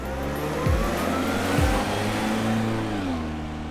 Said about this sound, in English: They take his computers, hard drives, and they even drive off with the man's car.